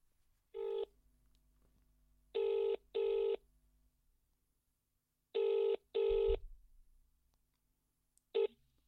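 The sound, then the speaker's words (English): An outgoing phone call ringing on the line: a steady buzzing ringback tone repeating in short double bursts with pauses between, clear and fairly loud, with no voices until it cuts off. “Well, I'm going to ring him.”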